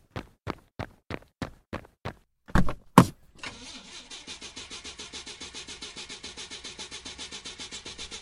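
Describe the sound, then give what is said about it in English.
A car engine cranks but fails to start during a loss of all electricity in town: a run of sharp starter clicks, a couple of heavier thumps, then a long steady rhythmic grinding crank that never catches. It is moderately loud, with no voices. “The car won't start.”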